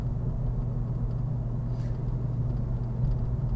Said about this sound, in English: Oh, you can hear it. You can probably hear it on the podcast. That motor. That 1960s or 70s engine.